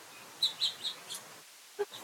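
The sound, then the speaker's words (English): A small bird that landed on wind chimes gives a quick run of four high, thin chirps, then two lower, rounder peeps after a brief pause, all fairly soft with no talking. “It would have landed on the wind chimes.”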